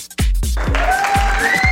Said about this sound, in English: Round of applause. Got to get my sound effects right. Round of applause.